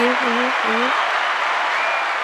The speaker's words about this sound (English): Women's rights are human rights. Okay. A little clap for that. Yep.